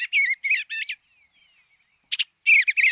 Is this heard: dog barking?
no